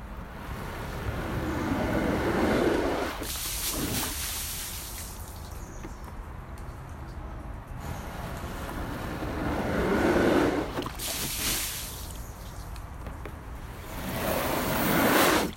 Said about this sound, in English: I just got to get some of this water off this ping pong table